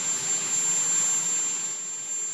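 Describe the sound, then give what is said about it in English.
A loud, steady helicopter engine roar fills the whole stretch, broad and unbroken, with a thin high-pitched turbine whine riding on top and no voices. “Can helicopters be more unpleasantly loud? Like, them motherfuckers are crazy loud.”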